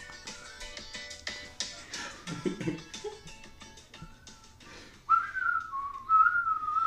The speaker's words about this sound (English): Great whistling in that tune.